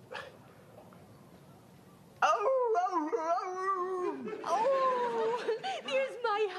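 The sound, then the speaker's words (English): After a couple of seconds of faint hiss, a dog, Hound Dog, breaks into loud, drawn-out howls that waver up and down in pitch, continuing in several long, moaning bursts. “Let me say hi to Hound Dog.”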